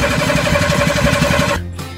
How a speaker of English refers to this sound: Let the engine crank for a bit as you turn the key, but don't overdo it, as you can overheat the starter motor if you run it for more than 10 seconds.